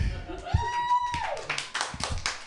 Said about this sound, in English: I love how, like, the hottest woman in this room starts applauding.